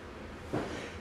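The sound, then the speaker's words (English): A single short, muffled sneeze bursts out against a quiet background hiss, brief and fairly soft, with no talking around it. “Sorry. Bless you.”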